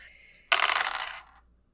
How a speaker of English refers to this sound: And I'm going to roll 3 dice for this desperate roll. Brutal.